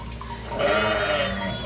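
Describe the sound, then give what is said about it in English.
A single sheep in trouble bleats, a long wavering cry that starts abruptly and carries on for over a second, loud and strained against quiet background noise. “I heard you cry. I'll always hear my sheep when my sheep are in trouble.”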